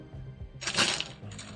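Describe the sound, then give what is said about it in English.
A brief burst of clattering as many dice are rolled, tumbling and rattling together, swelling quickly and then settling into a few fainter clicks. “Sounds like a lot of dice.”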